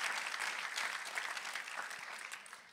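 An audience claps steadily after being asked to clap louder if they believe, a dense wash of many hands sustained throughout before easing slightly toward the end.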